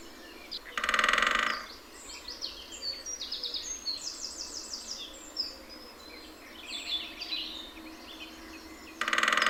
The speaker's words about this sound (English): hit with its bill repeatedly at very fast intervals, which resonates sound, and this drumming sound carries through the woodland. And that's the equivalent of song for a woodpecker. It's the same message. This is my patch. Keep out.